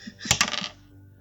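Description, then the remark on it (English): Dice rattle and clatter across a hard tabletop in a quick burst of sharp clicks, fairly loud, then settle into quiet within about a second, coming up a 10. “Heart of the cards, roll them dice.”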